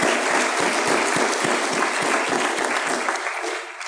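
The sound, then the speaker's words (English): Steady audience applause given to all the mothers, a dense wash of many hands clapping at a constant, fairly loud level, tapering slightly toward the end. No one speaks over it. “Let's give a round of applause to all the mothers.”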